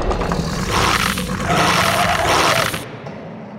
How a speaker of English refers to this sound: Dogs! There's a dog outside my door. I thought we were underground, but who knows anymore because there's a fucking dog outside my door.